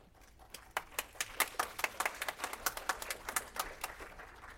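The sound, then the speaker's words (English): An audience applauding: a steady patter of sharp, overlapping handclaps at a fairly quick, uneven rhythm, soft overall, with no voices. “That applause is a reflection of your truth in the word and what you're doing.”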